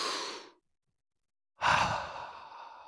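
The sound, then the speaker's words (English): A deep, airy breath drawn in, a short pause of silence, then a long, audible exhale like a sigh that tapers off gradually. Fairly loud, with no talking. “I'm going to take a deep breath”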